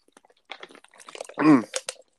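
drinking water

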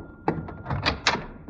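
door being opened

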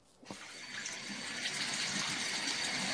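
water running

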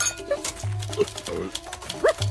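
dog barking

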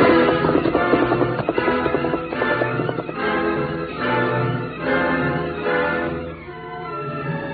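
horse galloping away

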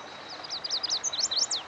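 chestnut-sided warbler song

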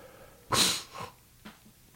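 sneeze

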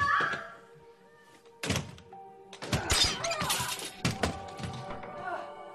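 door being broken open

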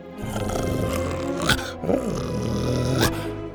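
dog growling

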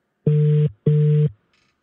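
telephone dial tone

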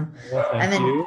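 dogs barking excitedly

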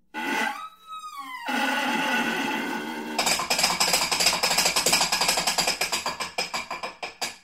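horse hooves clip-clopping

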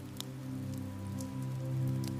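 soft rain falling

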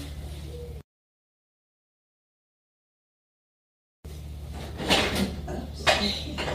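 door being closed

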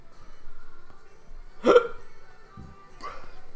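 hiccup

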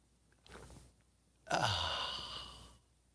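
sipping coffee

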